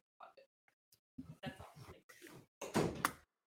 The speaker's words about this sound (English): Did y'all hear that? Did she say that and then slam the door as she was walking out? Yes, she did.